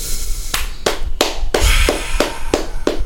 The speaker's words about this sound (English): I was clapping because I thought he was leaving it at that.